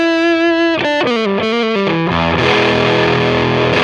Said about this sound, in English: It sort of gives you a bit more like a fuzzy kind of tone rather than an overdrive or a distortion.